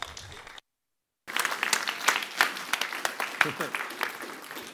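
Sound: audience applause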